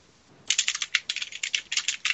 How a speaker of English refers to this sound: Oh, it didn't actually roll anything? No. Yep. Try that again. Let me actually roll a dice. Chance roll.